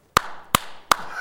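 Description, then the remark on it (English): Three sharp, loud hand claps in a steady rhythm, each one crisp and ringing briefly, with no talking in between. “And they asked me if I had been professionally trained to clap.”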